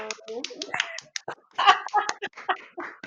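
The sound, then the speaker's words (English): A person claps their hands a few times in place of an applause sound button that was never installed, sharp, snappy slaps in an uneven rhythm, mixed in with people talking over them. “Sorry for the artificial clap.”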